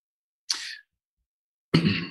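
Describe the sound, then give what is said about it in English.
Two short coughs separated by about a second of silence; the first is brief and breathy, the second fuller and rougher, with no talking around them. “I'm going to do the cough thingy.”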